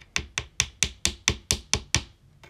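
A hard, stale stick of baseball card gum from an unopened 1988 pack, sealed for 32 years, is tapped against a surface about nine times in a steady rhythm, each dry, sharp click sounding like a pencil tap, with no talking.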